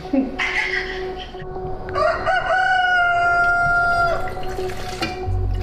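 A rooster crows loudly, one long drawn-out cock-a-doodle-doo with a rising start and sustained harmonic call, over a steady low background hum.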